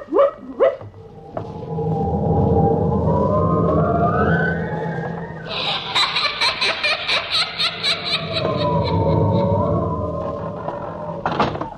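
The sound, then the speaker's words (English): A door in a haunted house creaks open in a long, wavering groan that rises and falls in pitch, growing harsh and rattly midway, with sharp bangs at the start and a final slam at the end. “That door again. Insidious feeling, doors opening and slamming.”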